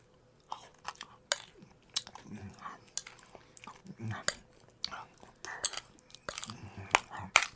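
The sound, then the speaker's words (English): Wet mouth sounds of someone eating butterless porridge by the spoonful: a quick irregular series of smacks, slurps and gulps, moderately loud, with faint breathy noises between them. “He walked back to the butterless porridge and gulped it down by the spoonful.”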